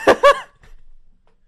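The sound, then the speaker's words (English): Two loud, harsh bursts overload the microphone and crackle with clipping distortion, followed by a faint low rumble and then near silence. No one speaks. “I just clipped the mic again.”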